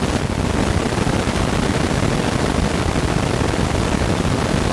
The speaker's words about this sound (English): This is significant because HF radio frequencies are typically full of static, squeals, and other annoying noises depending on atmospheric conditions.